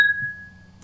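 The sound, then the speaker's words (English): A single bright clink of glasses touching, followed by a clear ringing tone that slowly fades, set against a low, quiet room murmur. “Cheers to being hoppy.”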